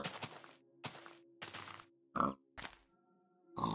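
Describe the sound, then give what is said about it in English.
A pig grunts in a series of short, rough bursts, about five or six snorty grunts with brief pauses between them, moderately loud with no talking. “Get that pig! Murder it!”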